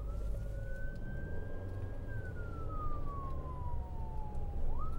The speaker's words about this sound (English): Yeah, get out of the way, guys. There's an ambulance coming through. I thought for a second it wasn't a real ambulance. I'll be honest. You know, it's like someone was like playing like their stereo really loud.